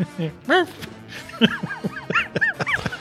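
A wolf pup yips in a quick, uneven series of high, squeaky rising-and-falling cries, fairly loud, with brief gaps between them and no talking.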